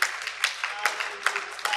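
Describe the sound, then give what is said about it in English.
An audience at a morning church service claps their hands together in a steady rhythm, sharp accented beats landing roughly twice a second over a continuous crackle of many scattered claps, moderately loud. “Why don't we clap our hands this morning?”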